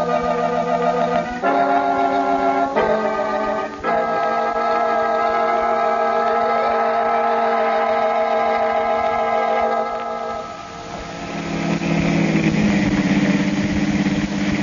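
A car engine hums steadily while driving down a road by moonlight toward Breaker City, its tone stepping up a few times early on like gear changes, then holding a loud, even drone before easing off and shifting to a rougher rumble.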